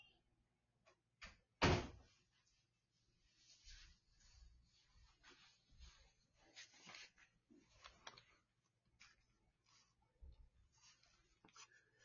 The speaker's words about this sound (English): Sorry, guys. Had a little knock there.